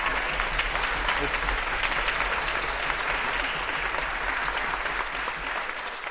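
A large audience in a concert hall applauds the day's guest, Markus Neby, steadily throughout, a dense, sustained wash of clapping that stays loud and even from start to finish, with a faint murmur underneath.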